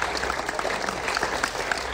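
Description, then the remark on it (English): An audience in a packed cinema in Versailles, France, applauds at the end of a film, a dense, steady wash of many hands clapping at once, with faint murmuring voices mixed in beneath the clatter. “At the end, they even applaud.”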